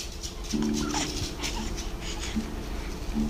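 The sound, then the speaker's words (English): A baby grunts in several short, strained bursts, separated by breathy huffing and snuffling, with no talking, at a kitchen table. “Those are some powerful words. Thank you. Powerful grunts.”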